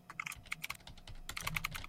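Rapid keyboard typing, a quick irregular flurry of clicky keystrokes, growing busier toward the end, with no voices; someone typing a message during a group call.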